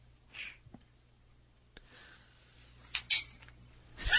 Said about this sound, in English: there seems to be cutlery involved. Okay, that was three mouthfuls of this stuff, so.